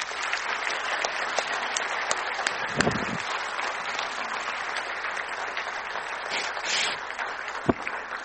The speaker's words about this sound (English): I want to give them a round of applause.